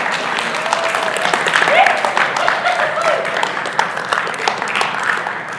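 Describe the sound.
A crowd claps steadily for several seconds, applauding the mention that Christmas is almost here: a dense, sustained patter of many hands, with a few voices calling out or cheering amid the applause.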